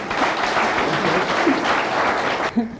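An audience applauds with steady, dense clapping for about two and a half seconds, then it cuts off abruptly and a voice briefly begins to speak.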